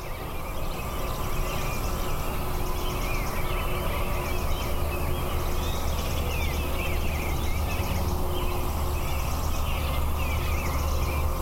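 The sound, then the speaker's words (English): Steady low roar of interstate highway traffic fills the background, with many small birds chirping and twittering faintly throughout, a continuous dawn chorus around Aldo Leopold's cabin recorded in summer, partly masked by the road noise. “But what you do hear is the traffic from the interstate.”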